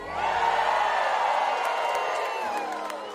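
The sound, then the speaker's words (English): A large crowd in Branson cheers and whoops in a loud, sustained roar that holds steady for a few seconds, with scattered high-pitched yells rising above the dense wash of voices. “Now all of Branson is cheering.”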